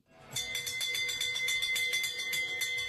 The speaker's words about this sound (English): Okay. That sounds like a fire engine. No, it's not. An old-style fire engine. It's last orders.